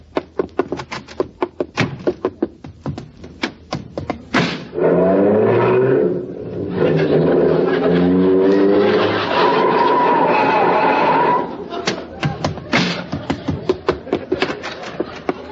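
A car, driven over from next door, sputters and chugs, swells into a loud, sustained revving roar as it pulls up, then drops back to uneven puttering before stopping. No one speaks.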